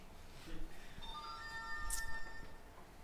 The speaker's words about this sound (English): And his phone will go off just like that.